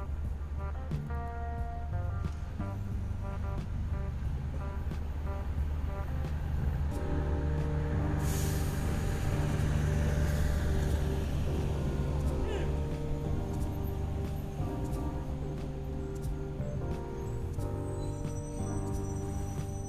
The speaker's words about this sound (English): So, yeah, that's what y'all hearing in the background, if y'all not hearing the birds. And the cars and the buses and shit. That's beautiful. Like, the mixture of the sounds.